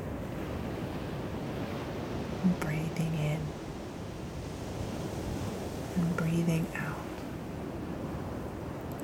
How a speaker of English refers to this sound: And as this ocean water ripples around us, and as this sand below us washes in and washes out, literally changing every single wave of